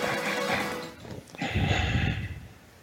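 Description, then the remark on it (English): Heavy breathing blown straight into a microphone: two loud, rough, windy breaths, the second one lower and more gusty, with no voices. “Who the hell is breathing into the microphone?”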